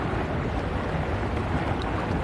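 Steady, dense rush of churning, bubbling water from the jets of a hot tub, loud throughout with no voices over it.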